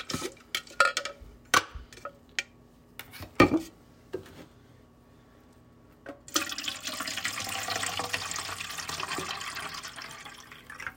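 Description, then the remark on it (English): In a kitchen, a few sharp clinks and knocks as a water tumbler or bottle is handled, then a steady, fairly loud rush of tap water pouring into it for several seconds. No one speaks. “So let's fill our water tumblers or bottles.”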